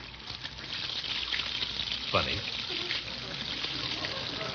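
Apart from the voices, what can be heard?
water running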